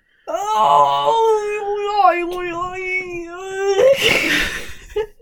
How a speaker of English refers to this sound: Sorry, that was just me doing a big stretch. It's now 3:10 and I'm still not dressed. That amazing stretch and it just makes you say weird noises. Yeah. That's what I just did.